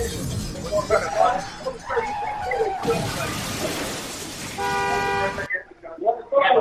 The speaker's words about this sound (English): Hey, I rammed the door. I'm out. I'm out of the car wash now.